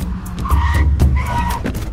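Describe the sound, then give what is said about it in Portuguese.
Tires screech loudly as two cars skid to a halt to block a black Cadillac on a street in the Botafogo neighbourhood at about 2 in the afternoon, two sharp squealing bursts over a heavy low engine rumble, intense, with no voices. “Eles passavam pela rua Marques, no bairro de Botafogo, quando 2 carros bloquearam o Cadillac.”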